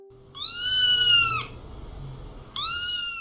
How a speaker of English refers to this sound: For el gato, which is the cat, we'll hear this sound.